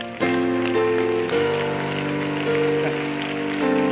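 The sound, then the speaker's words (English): An audience claps in a dense, steady patter, with sustained organ or keyboard chords ringing over it and shifting pitch every second or so. No one speaks. “The clapping is free.”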